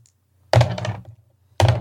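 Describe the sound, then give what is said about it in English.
Two players each roll two six-sided dice (2d6) onto a hard surface in two separate rolls during a tabletop game: a rattling burst of clicks and thunks, a short pause, then a second loud clatter beginning. No one speaks. “We both roll 2d6.”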